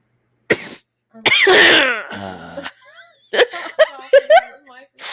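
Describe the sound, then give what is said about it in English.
A sick person gives a sharp cough, then a longer raspy, throaty cough burst, followed by a run of strained, wavering vocal noises from the same voice. “I'm going to do that every time I have to cough.”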